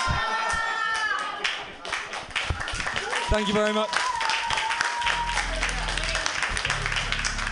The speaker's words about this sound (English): Keep clapping